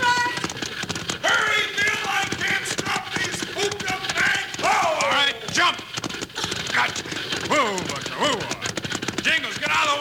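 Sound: horses' hooves clip-clopping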